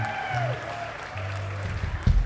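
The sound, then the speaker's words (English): An audience claps and applauds for a band in a steady, noisy wash that swells slightly toward the end, with a faint ringing tone and low hum running underneath. “Let's have a big round of applause for …, who joined us this evening.”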